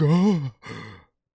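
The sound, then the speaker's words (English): An exaggerated dramatic gasp: a loud voiced cry rising and falling, then a brief pause and a breathy, rasping breath that trails off into silence. “This is my gasp, my dramatic gasp like an enemy.”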